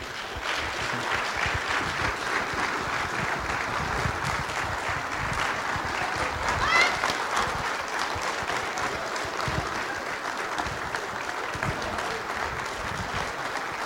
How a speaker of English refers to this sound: Can you clap for Jesus this time around? Give a hand covering for Jesus.